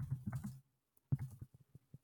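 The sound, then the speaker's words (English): Quick bursts of computer keyboard typing as someone looks something up, a dense flurry of keystrokes, a brief pause, then another run trailing off into a few separate taps. Fairly soft, with no voices. “Keyboard time.”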